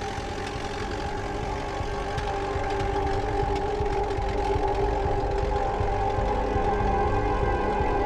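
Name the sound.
car engine driving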